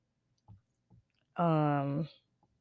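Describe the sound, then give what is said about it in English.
Two soft clicks of someone clicking on a phone, spaced about half a second apart, followed by a longer vocal sound from a person. “So you could probably hear me click, click, clicking or whatever.”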